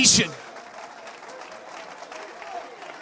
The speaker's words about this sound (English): Well, some of you are clapping your hands. I'm not so sure about the rest of you.